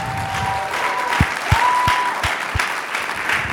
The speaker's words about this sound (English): You guys are incredible. Can we just give them a round of applause really quick?